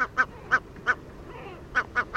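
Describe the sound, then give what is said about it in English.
Great black-backed gull, a large North Atlantic gull, calls: a series of short, gruff barking notes, four evenly spaced, a brief pause, then three more in quicker succession, fairly loud with no talking. “Great Black-backed Gull, North Atlantic Predator”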